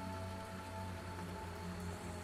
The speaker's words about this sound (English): Let's move inside. I don't feel like trying to shout over this rain and start walking back that way.